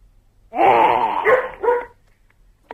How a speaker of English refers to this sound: I was more scared by the dog barking than the kid going, bleh.